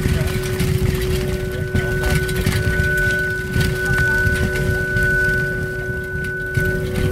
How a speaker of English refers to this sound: I thought it would amplify the sound of my rattly bike a bit more, but you can hear that it still sounds the same.